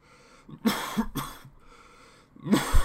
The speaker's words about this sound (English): was coughing.